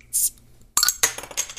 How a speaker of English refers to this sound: and that's why we should all grab a beer or a water, whatever makes you happy, and let's crack that bad boy open.